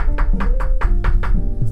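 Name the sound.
knocking on a door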